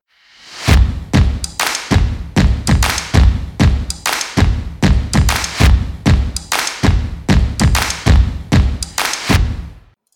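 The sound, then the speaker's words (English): A loud barrage of cannon fire, booming blasts in quick, steady succession, roughly two per second, each with a deep thudding low end, continuing for about ten seconds with no voices. “Fire the cannons!”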